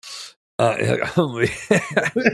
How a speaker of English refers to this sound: So, okay, here's the deal. I'm wheezing. I'm snotty sounding. I technically been fighting strep throat. He's got a tricky cough.